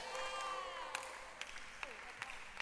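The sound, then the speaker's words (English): Sparse, half-hearted hand clapping from a crowd: a few scattered, sharp claps rather than a full round of applause, with faint voices murmuring underneath. “Your hand clap is weak.”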